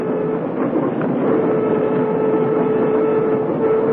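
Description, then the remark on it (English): Steady rumble of a commuter train rolling along the rails, with a continuous low roar and a faint whine, loud throughout, no voices. “Now, as a rule, people don't get murdered on trains. Why, I knew all about the Orient Express, but a commuter train?”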